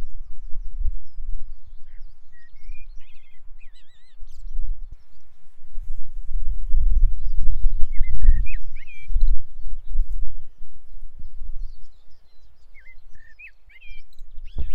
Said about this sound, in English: It's a very smart blackbird, because the whole point about doing it this time is that its song is going to travel further across the air, and it's literally sat at the top of a cliff looking out across New Haven, and its song is going to be heard